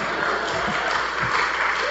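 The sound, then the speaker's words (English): An audience in a church claps steadily during a sermon, a dense, sustained wash of many hands at an even volume throughout, without any distinct individual claps standing out. “If y'all clap it, give me time to catch my breath.”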